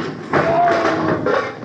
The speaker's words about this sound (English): Oh, he did it again. Well, why don't he watch where he's going? Open the door, quick. Okay. Well, folks, I fell over it again.